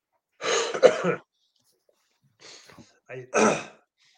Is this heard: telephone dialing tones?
no